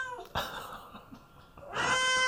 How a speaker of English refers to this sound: He's crazy meowing. Last few days, he's been so meowing. So meowing. He's like, he needs to be fixed. Poor kitty cat.